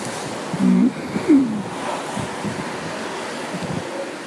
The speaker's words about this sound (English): And now it's starting to rain. This is quite nice.